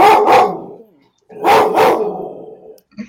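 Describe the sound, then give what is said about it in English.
A dog barks loudly in two bursts, each a quick double bark with broad, harsh tone, separated by a short pause, followed by a faint brief sound at the end. “I take it that's your baby. I have two big dogs myself.”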